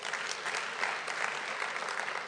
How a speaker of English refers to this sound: They're very active. They're all active in the kingdom of God. A round of applause for the wisdom group.